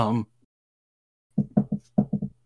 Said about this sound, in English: That's me knocking on wood, by the way.